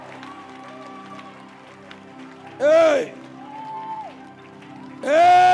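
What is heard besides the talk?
audience clapping and cheering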